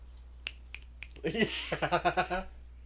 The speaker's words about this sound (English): Just little claps.